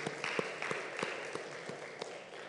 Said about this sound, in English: And so, if you would, could we give a short round of applause for those that served last night, just simply say thank you.